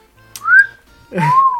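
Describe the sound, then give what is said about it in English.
Someone makes two short, breathy whistles, a rising note and then a lower, longer one with a hiss of air, as if struggling to get a clean tone. “I can't whistle.”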